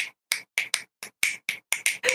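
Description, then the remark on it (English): A quick run of about nine crisp finger snaps, given as a poet's way of clapping, in an uneven rhythm, some in pairs, each sharp and bright, with silence between them and no talking. “I'll give you the poet's way of clapping.”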